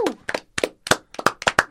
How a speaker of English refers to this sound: Am I getting a clap because I didn't get a clap the last time? And yes. I was all like, why didn't I get a clap?